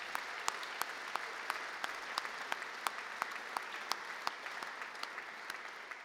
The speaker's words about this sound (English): Ladies and gentlemen, I think we should thank Paul Davenport for that splendid piping introduction as he piped us into the hall this evening. Give Paul a big round of applause.